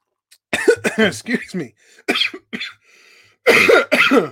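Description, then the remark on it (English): A male sports commentator coughs and clears his throat several times during a rugby match broadcast, loud rough bursts in quick clusters separated by short pauses, ending with two heavier hacking coughs. “Fortunately, I don't have a cough button.”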